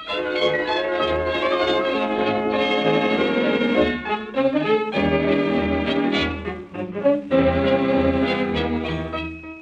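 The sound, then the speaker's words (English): Bells ring out loudly and continuously, their overlapping tones layering into a rich musical peal with several fresh strikes along the way and no voices. “Ding dong ding, the bells do ring.”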